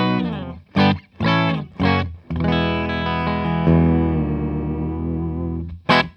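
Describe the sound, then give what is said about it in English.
A distorted electric guitar plays three short, punchy chord stabs, then a long sustained chord that rings out and fades, ending with one more quick hit; the tone is dry with no echo. “I'll turn that all the way off. In fact, thank you. All right. So, let's try that again. There you go. That's nice and dry.”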